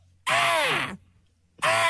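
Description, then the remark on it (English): A loud, harsh bald eagle screech sound effect with a rising then falling pitch, followed by a brief pause and a second screech starting, clear with no talking. “Where's that bald eagle? Damn, you had that queued up.”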